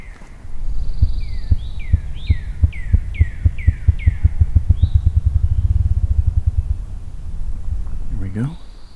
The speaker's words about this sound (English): Ruffed grouse. There's one near me here. Seems to be in these woods here somewhere, off trail.